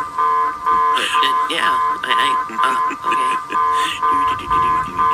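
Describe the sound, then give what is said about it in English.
A video game drop alarm blares loudly in a steady, repeating electronic cycle, pulsing about once a second, while people talk over it. “It's an alarm, so... Yeah, it's a drop alarm.”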